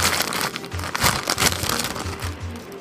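A chip bag crinkles and rustles almost nonstop for a few seconds, crisp, crackly bursts rising and falling in loudness, with muffled lower thumps that could be chewing mixed in.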